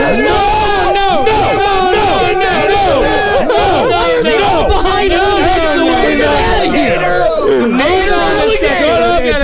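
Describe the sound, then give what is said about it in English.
A large crowd shouts loudly and continuously, many voices overlapping in rowdy, chant-like cries of "ho" that fill the whole stretch without a break. “If I hear another ho from the crowd, you're all out of here.”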